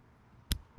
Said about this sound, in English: I had to get the sound effect of me slapping my leg.